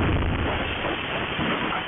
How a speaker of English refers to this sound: He and his next door neighbor were talking when a house across the street blew up.